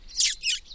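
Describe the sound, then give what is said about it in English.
Three shrill, squeaky notes in quick succession, made by a person's mouth to draw in little birds, moderately loud with no talking. “It's often a good way of attracting little birds in, just these squeaky note noises.”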